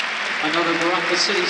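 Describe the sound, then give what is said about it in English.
Steady applause from a large crowd as Marshall comes off, continuous and fairly loud, blended with a murmur of many voices and a few tonal calls rising through the noise. “I'm standing and clapping, Marshall.”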